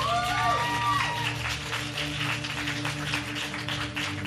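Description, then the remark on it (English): Thin, scattered applause from season pass members in a live audience, given when asked to show by applause who holds a season pass: a modest patter of clapping with a short rising-and-falling whistle or whoop near the start, over a steady low hum. “By a little show of applause, how many people here tonight are season pass members?”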